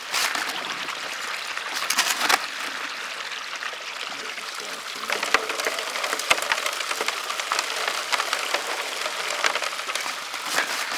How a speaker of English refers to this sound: Other members are spread out across the river, using a variety of equipment in hopes of finding gold. This includes a high banker, a long sloped piece of equipment that gravel is shoveled into and rinsed through with water.